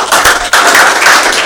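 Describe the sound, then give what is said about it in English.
A church service audience claps for themselves in a loud, dense burst of applause that briefly dips before surging again, a steady wash of overlapping hand claps with no voices heard. “Oh, yeah, clap for yourself now.”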